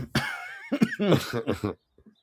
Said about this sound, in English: And I apologize. I hope nobody gets whatever flu cold I had. I'm still coughing like 3 weeks after this thing. It's brutal. And it wasn't even COVID.